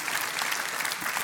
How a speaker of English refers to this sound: I think we ought to clap our hands, show our love.